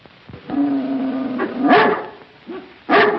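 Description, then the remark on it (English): A dog growls and whines in a low, drawn-out tone, then lets out two sharp, loud barks a little over a second apart, with no one talking. “Well, sir, dogs. Bring Flip and Frowsy.”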